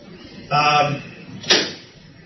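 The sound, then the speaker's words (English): A door creaks open with a drawn-out, tonal groan, then about a second later bangs shut with a single sharp, loud thud. “If somebody can please get up and ask them not to open the doors.”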